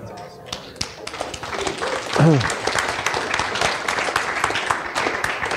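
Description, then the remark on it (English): A crowd applauds steadily, many hands clapping in a dense, continuous patter, with a brief vocal exclamation rising from the audience partway through. “Now you're clapping, but God is calling you.”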